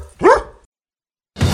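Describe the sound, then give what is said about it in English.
A single loud bark from the dog Barkley, followed by a moment of silence and then a burst of broad, rushing noise at the end. “Did that dog just grab a phone and dial 911?”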